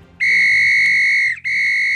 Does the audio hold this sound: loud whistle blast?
yes